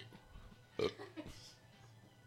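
A single short, throaty burp erupts near the start, followed by a brief gurgling tail and a few faint breathy noises in an otherwise quiet background.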